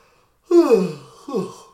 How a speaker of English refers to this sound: See, another yawn.